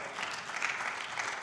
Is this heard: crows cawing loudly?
no